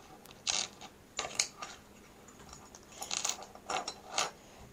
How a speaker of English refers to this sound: We're going to find one transparent glass for the window frame, and that glass will measure 1 by 2 by 2. I think I have it here. And we'll snap the window glass into the inner notch of the window frame.